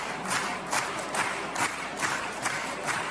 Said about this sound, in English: So they realized, how do we stop the show from going on? So they started clapping, and the opera couldn't perform. So this is what it sounded like.